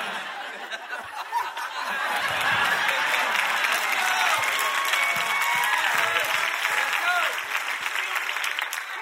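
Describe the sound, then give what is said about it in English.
An audience claps steadily for several seconds, a dense wash of many hands, with scattered chuckles and murmured voices mixed in before the applause tapers slightly. “If you clap, I won't call you out.”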